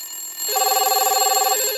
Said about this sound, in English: While I was waiting, the phone at the front desk rang off the hook.